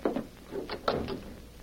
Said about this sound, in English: Open the door.